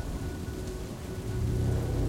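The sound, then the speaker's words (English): A sudden thunderstorm with lightning, rising wind and steady rain hissing across the whole band under a dark overcast sky, and a deep, rolling rumble of thunder that swells louder in the second half, with no one speaking. “There's lightning and thunder. Suddenly there's a storm.”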